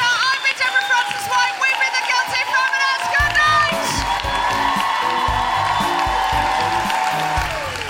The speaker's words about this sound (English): Big round of applause for our guests.